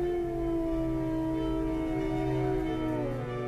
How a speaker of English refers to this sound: Many people to Ireland in the 1600s, certainly the early 1600s, would have been aware of wolves, would have known they were in their area and would have probably heard them if they've never even saw one.